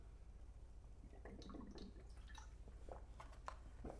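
Someone takes a quick sip of water into the mic: a few soft, wet slurps and gulps scattered over a few seconds, with no talking.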